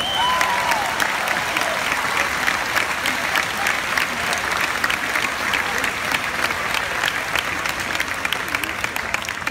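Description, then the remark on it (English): Sustained audience applause for the teachers, a dense steady patter of many hands clapping at an even loudness for several seconds, with faint cheering or whistles mixed in near the start. “And they all deserve a big round of applause.”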